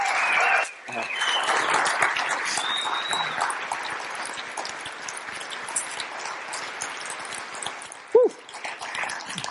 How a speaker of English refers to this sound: Thanks so much for sharing. Would you stand up and cheer for the boy?